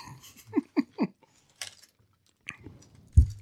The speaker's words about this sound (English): I do crunches all the time. I'm crunching those cookies left and right.